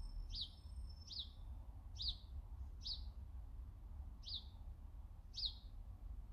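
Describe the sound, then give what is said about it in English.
Short, high bird chirps repeat roughly once a second, six in a row, over a steady low outdoor rumble, clear with no voices. “I hear those birds, and those birds actually manifest in my vision because I can see them on a tree top with that sun.”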